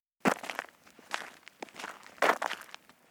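Footsteps of two people walking with their dogs through a park, several irregular crunchy steps on a rough surface, moderately loud, with no talking.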